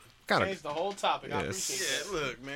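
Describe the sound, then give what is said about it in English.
A run of harsh, heavy coughs, several rough bursts in quick succession, loud, followed by a raspy, wheezing exhale. “That devil over here coughing up a lung.”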